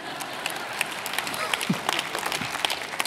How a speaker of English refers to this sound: thank you, Mom, for clapping.